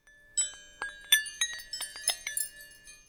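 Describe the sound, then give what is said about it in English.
Wrenches clink together in a quick, irregular series of about ten strikes, each leaving a bright, high metallic ring that lingers between hits. No one speaks. “Let us chime the wrenches.”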